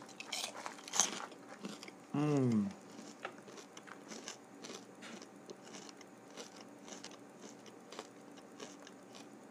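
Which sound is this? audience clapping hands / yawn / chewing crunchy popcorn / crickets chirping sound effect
chewing crunchy popcorn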